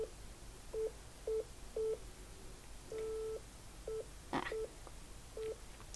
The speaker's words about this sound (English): Where I had that solid beep.